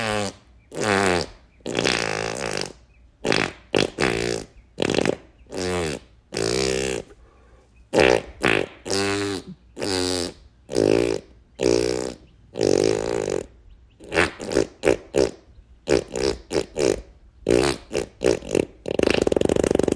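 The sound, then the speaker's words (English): A rapid string of fart noises with shifting pitches, bursting in rhythmic, melodic phrases like a tune, loud with brief gaps between blasts. “So without further ado, I'm going to give you my latest fart song.”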